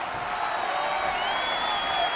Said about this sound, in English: Round of applause.